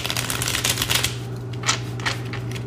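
A deck of question cards being shuffled: a run of quick, crisp papery flicks and riffles, with a few sharper snaps near the end, over a steady low background hum and no talking.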